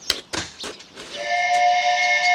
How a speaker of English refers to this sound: That had nothing to do with departed spirits. That, my lad, was a steamboat whistle. You see it down there? Oh, me see him. Boat just come around bend.